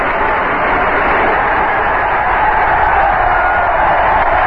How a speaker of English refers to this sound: That is just a crowd reaction to a string of firecrackers that have sounded back up in the caverns of Shea Stadium somewhere.